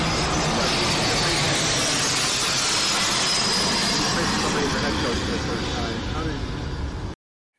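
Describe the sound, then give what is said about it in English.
A loud, steady roar of a low-flying jet plane coming in to land at an airport passes overhead of a football practice field during Bill Belichick's press conference, broad and rushing, with indistinct voices buried underneath before it cuts off abruptly. “There are airplanes literally in landing on Bill Belichick's head as he does.”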